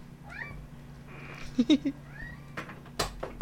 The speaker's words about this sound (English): I have a cat in here. Ah, we love Tara. She can meow whenever she pleases.